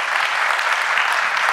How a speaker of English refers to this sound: Do you have any nurses here? Nurses, you're number one. We trust you more than anything else right now. Yeah, give them a little clap.